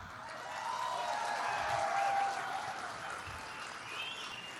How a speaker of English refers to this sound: There are the cops applauding that. Applauding police brutality.